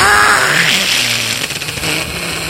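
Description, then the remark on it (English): A person imitates a creature's fierce, loud hissing shriek, a harsh, breathy rasp that starts with a rising, strained screech and then holds as a rough, noisy hiss for a couple of seconds. “That was more of a hiss than anything.”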